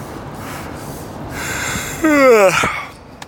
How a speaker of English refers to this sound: Here comes a yawn.